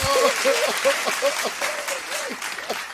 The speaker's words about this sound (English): Clap it up for Antonio